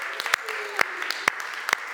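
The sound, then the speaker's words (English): A crowd applauds steadily for everyone listening online, a dense wash of clapping with a few loud, sharp claps landing at an even, regular beat about twice a second. “Come on, give them a round of applause.”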